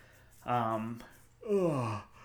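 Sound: big yawn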